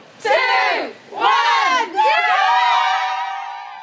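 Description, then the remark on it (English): A pub crowd, out on the first day lockdown restrictions eased, cheers together in three loud, rising shouts, the last one held and slowly fading out, while it pours with rain. “And even though the weather was terrible and it was absolutely pouring, for a lot of people, it meant going straight to the pub. Cheers!”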